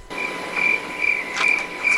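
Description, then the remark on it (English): Crickets chirp in a steady, repeating pulse of high, thin trills, moderately loud, with a faint hiss of night ambience underneath and no voices. “Crickets. You can hear them all.”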